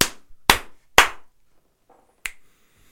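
Three sharp, loud slaps land in a steady rhythm about half a second apart, followed after a pause by a single crisp, higher-pitched finger snap. No one speaks.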